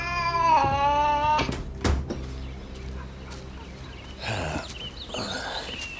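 A cat lets out one long, drawn-out meow, then falls quiet while a few soft knocks and rustling noises follow in the background.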